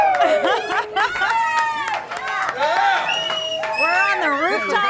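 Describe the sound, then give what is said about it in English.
A live crowd at the North America edition of the VoiceOver Extravaganza in Tucson, Arizona cheers and shouts nonstop, many excited voices overlapping in high, rising yells that stay loud and dense for the whole stretch. “Listen to the crowd!”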